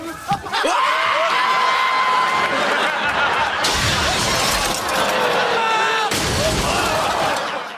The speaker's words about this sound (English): Was it just me or did anybody else get really upset when the jukebox smashed? No, I did. I was a bit upset. Yeah, I thought it was a shame. Yeah. Yeah. And it looks like it was a real jukebox that got smashed, so I feel for it.